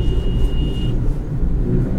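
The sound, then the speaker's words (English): Muffled city traffic in Bangkok heard from inside a car: a steady low engine and road rumble fills the cabin, with a faint high tone briefly present and no talking. “The sound of angry drivers.”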